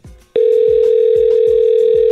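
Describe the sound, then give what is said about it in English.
A steady, unbroken telephone ringing tone while calling someone's dad, at a single mid pitch. It starts abruptly after a short low rumble and holds loudly to the end, with soft rhythmic low thumps underneath. No one speaks. “Calling dad.”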